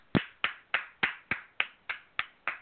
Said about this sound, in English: I'm kidding. I'm clapping.